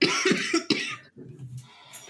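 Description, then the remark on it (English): Several quick, harsh coughs burst out, followed by a softer, raspy throat-clearing sound trailing off at the end. “Stop coughing”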